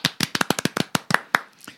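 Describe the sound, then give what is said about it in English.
A single person claps their hands about a dozen times in a quick, slightly uneven rhythm. The claps are sharp and crisp, then space out and trail off softer toward the end. “I'm clapping now.”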